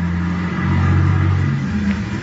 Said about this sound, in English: There's a car coming down the hill toward us. Sure is making time.